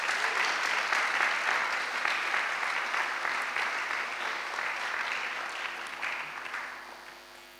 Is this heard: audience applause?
yes